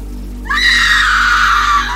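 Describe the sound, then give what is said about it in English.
A woman's terrified scream bursts in after a moment of quiet at a campsite with tents on a dark, moonless night, a single loud, high-pitched cry held for well over a second and wavering slightly as it fades, over a faint low hum. “A scream shattered the stillness, jolting us awake. It was Sarah's voice, filled with raw terror.”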